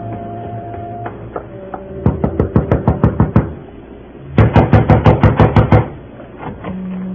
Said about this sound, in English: Gentle knock does it, Mac. Shall we try again?